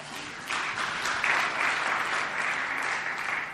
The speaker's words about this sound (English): …, a round of applause.